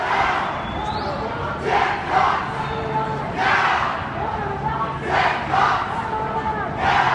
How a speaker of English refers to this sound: Protesters took to the streets Saturday in St. Paul outside of the state fair, yelling, quote, pigs in a blanket, fry them like bacon, end quote.